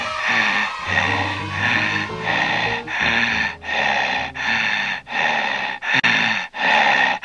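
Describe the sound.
Loud heavy breathing, a person rasping in and out in a steady rhythm of about one breath per second, exaggerated and menacing, imitating the heavy breather of horror films, with no talking.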